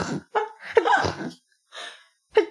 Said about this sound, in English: Oh, God, 6 out of 10. In terms of sneezes? In terms of, like, sound quality of the sneezes.